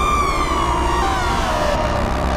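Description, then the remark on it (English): A harsh, siren-like synthesizer feedback screech slowly slides downward in pitch over a thick, steady low drone, loud and continuous throughout, with no voices. “Now we get this lovely kind of like screech intermittently between our nice thick drone.”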